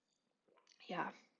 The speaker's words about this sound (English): I have a splash of regular oat milk in it today. If I was smart enough, I would have grabbed the maple oat milk beverage from Trader Joe's, and that would be in this cup as well. But we're just gonna take a quick sip.